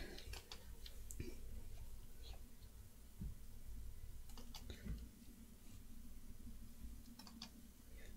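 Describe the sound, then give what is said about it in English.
Soft keystrokes on a computer keyboard come in short, irregular bursts separated by pauses, fairly faint against a steady low background hum. “Hey, let me see the keyboard real quick.”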